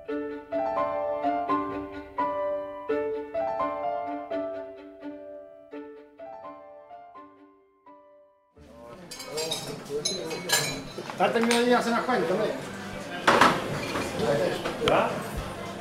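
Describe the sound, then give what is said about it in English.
A few seconds of plucked melodic music give way to a busy bar and restaurant, Casa Pedro in southern Spain: dense crowd chatter with frequent sharp clinks of dishes, glasses and cutlery throughout. “This is a bar and restaurant in southern Spain.”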